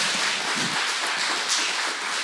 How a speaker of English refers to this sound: Can we again give them one last round of applause?